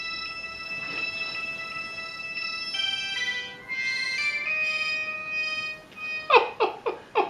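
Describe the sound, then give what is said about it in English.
A small synth keyboard plays bright, buzzy electronic notes that step between sustained pitches, then finishes with about five quick swooping pitch bends that dip and rise in rapid succession. “That's a mod wheel. Yeah. Actually, no, that was the pitch bend, wasn't it?”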